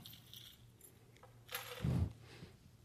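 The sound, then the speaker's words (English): A bunch of many keys on a keychain jangles briefly, a short metallic rattle with a soft thump, faint, with no voices. “These keys on my keychain, I got a lot of keys.”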